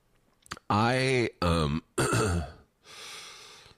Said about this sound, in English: Oh my God, I really am. Why am I coughing so much? I'm laughing so much that I'm coughing. I guess it's not that funny.